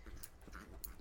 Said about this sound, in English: Listen, you hear this dog?